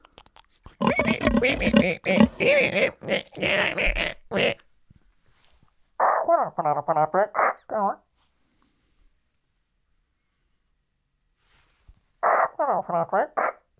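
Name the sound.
voice imitating pig oinking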